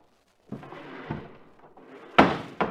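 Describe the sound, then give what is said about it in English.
A back door is unhooked and pulled open with a few wooden knocks and rattles, ending in a sharper thunk and a final clack, with no voices. “Here, I'll unhook the door.”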